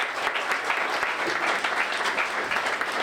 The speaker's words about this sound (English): It's been absolutely awesome. A huge round of applause for these guys, please. Great job.